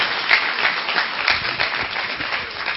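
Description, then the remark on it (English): A crowd claps together to welcome a new member, a baby, in steady, overlapping applause, a dense patter of many hands that holds at an even volume throughout, with no voices standing out. “I was going to skip it because we already did it, but look, let's all clap because we have a new member.”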